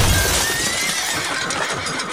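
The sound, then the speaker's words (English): A horse bursts through the smashed glass front doors of Sheridan Library. Horses whinny and neigh in a dense, overlapping chorus of high, wavering calls, loud and continuous for about two seconds, with some low rumbling underneath. “Lots of whinnying.”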